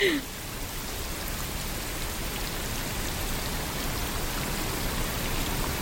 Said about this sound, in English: Is that rain? So, yeah, that's rain, which many people find very relaxing. But yeah. This isn't just any rain. It's rain that has been modified to make it white noise.